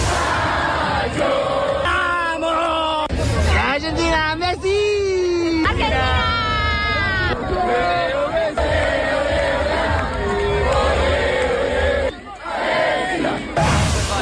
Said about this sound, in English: There was a big crowd in town last night then celebrating into the early hours.